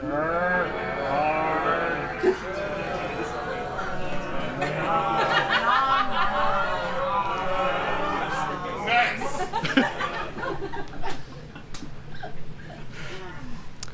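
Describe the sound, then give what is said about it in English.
An audience groans and moans together, doing their best impressions of Halloween zombies. The sound is a dense, wavering chorus of low, drawn-out voices, with scattered higher wails and cries rising over it. “Let me hear your best zombie impressions, audience members.”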